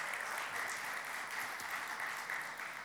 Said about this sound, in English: And so as a church, I think that's worth clapping about.